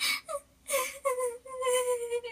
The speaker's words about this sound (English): She told of how years later, a man had been walking by the house when he heard a small child crying.